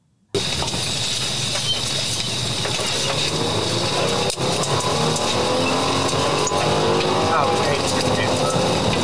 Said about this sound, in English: What? I couldn't hear you from the roaring engine.